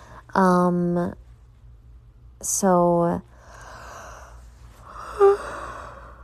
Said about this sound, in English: Fuck it, I can't stop yawning.